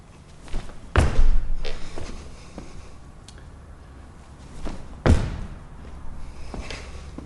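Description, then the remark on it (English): Two heavy thuds of unweighted jump landings hit the floor about four seconds apart, each a loud impact, with a few lighter taps and shuffles in between and no talking; the jumper swings the arms to generate force off the ground. “But right now I'm not, so I'm gonna use these arms to generate more force, more explosion off the ground.”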